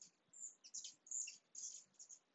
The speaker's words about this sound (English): So are the birds, apparently.